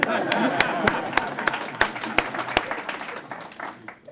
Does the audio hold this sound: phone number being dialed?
no